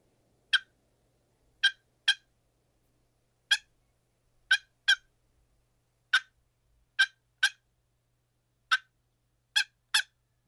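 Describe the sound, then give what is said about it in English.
Sharp, short turkey clucks from a wooden box call, made by short strikes of the paddle on the box, about a dozen crisp notes in loose singles and pairs, alone with no talking. “So I'm going to demonstrate the cluck for you now.”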